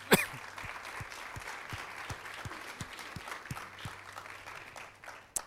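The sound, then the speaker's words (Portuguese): A church audience applauds the Lord steadily, dense clapping lasting several seconds, with a few louder claps standing out near the start and end. “Aplauda ao Senhor que Ele merece, Ele é bom.”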